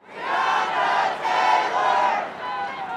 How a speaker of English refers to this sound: An hour before curfew, a crowd of more than 100 protesters marches through downtown Louisville. They pass the Galt House and the Bell of Louisville, chanting the name of Breonna Taylor.